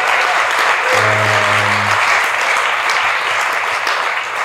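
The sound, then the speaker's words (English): A crowd applauds the guests steadily and loudly at a Walla Walla Wine event, a dense wash of clapping hands that holds for the whole stretch, with a low humming tone briefly sounding underneath near the start. “Give a round of applause for all the guests.”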